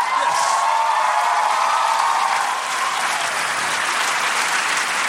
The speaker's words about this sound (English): One more round of applause for State Senator Ed Murray, who's done so much for all people of this state. Thank you.